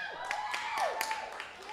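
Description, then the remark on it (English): A few scattered hand claps ring out, mixed with rising and falling whoops and cheers from a small, lively audience at AV, clapping when asked whether it is their first time there. “By round of applause, how many of you, is this your first time here at AV?”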